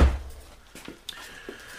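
door being closed

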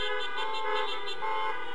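car horn honking

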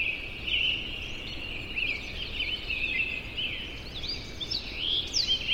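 dawn chorus of birds

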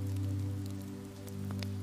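rain pattering

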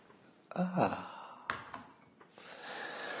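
sipping a drink

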